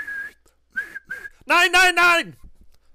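A person imitates police whistles: a few short thin whistled tones, then three loud, shrill blasts in quick succession that trail off at the end.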